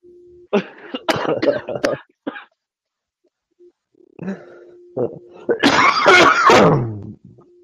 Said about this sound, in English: Oh, this has turned into coughing ASMR hour.